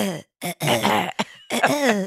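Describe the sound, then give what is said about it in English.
A loud series of rough throat-clearing noises from a tickly throat, three or four voiced, gravelly bursts in quick succession, halfway between a hack and a cough, with no words spoken. “It's not a great cough, and it's not really a... It's something else.”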